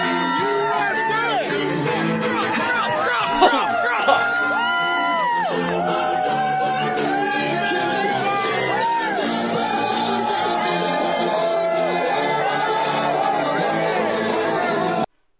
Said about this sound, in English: Holy shit, look at this crowd. Of how far this crowd goes back. It's incredible, guys.